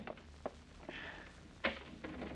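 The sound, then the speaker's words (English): A door opening: a few soft clicks and a short creaking squeal, followed by a sharper latch-like thump, all fairly quiet with no voices. “Coming in the door fast, just so you won't change your mind and close it on me.”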